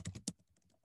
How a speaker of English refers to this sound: Also, while you're typing that, and I know you need to like talk through what you're typing since, you know, people are hearing this,